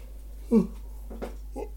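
A brief voiced yawn comes as a short tonal burst, followed by a few softer, breathy vocal murmurs over a low steady hum.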